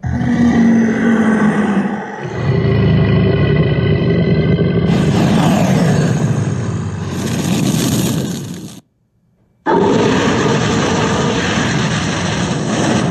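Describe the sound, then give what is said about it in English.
A dragon wakes with a loud, deep, rumbling roar layered with growls and a rising screech. It breaks off into a second of silence, then the roaring surges back just as loud. “Look, the dragon is waking up.”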